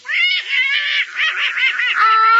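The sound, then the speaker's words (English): A voice imitates Herman the duck, letting out a loud run of nasal quacks that blur together into one continuous, warbling squawk lasting a couple of seconds, with no other talking. “Oh, it's my darling little duck.”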